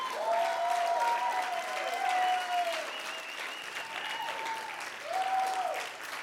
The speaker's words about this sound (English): Why don't you give Jesus a round of applause? Come on.